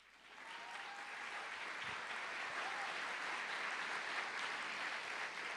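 Sustained applause for God from a large audience at Presencia Viva, a dense steady roar of clapping that swells in within the first half second and holds at an even, loud level throughout.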